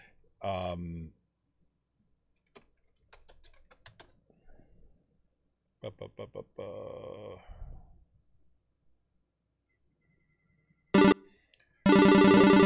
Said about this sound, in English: And now my phone. Oh, this is crazy. I'm telling you, this has been the way my life is working. I got my phone's ringing now.